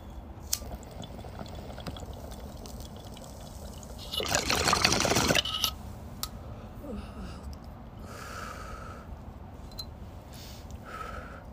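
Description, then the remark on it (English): A short, loud burst of bubbling water from a bong hit, lasting just over a second, followed by a few quieter liquid sounds and swallowing as water is drunk. No one speaks. “That was a fat ass rip. But I didn't fucking cough once. I just immediately drank water and no cough.”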